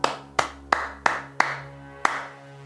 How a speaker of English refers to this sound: Here's how to play Clap It Back. Your job is to clap the rhythm of everything the singer sings. If the singer sings, "Penguins eating French fries," you clap.